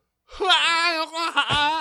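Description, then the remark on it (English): A person vocally mimics a long yawning exhale, a drawn-out, wavering voiced sigh lasting over a second with a brief dip in the middle, fairly loud. “that was just the exhale of a yawn.”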